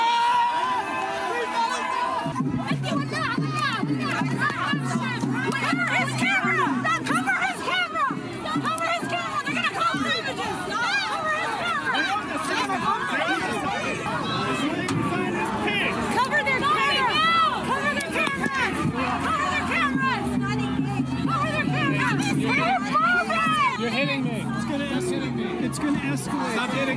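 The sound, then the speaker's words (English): A dense, loud pro-Palestinian protest crowd screaming and shouting "Cover the camera" at once, many overlapping raised voices forming a continuous chaotic roar for the whole stretch, with no single voice standing out. “Now, you out there may be wondering, after hearing this cacophony of noise, what were the pro-Palestinian protesters screaming, "Cover the camera" for?”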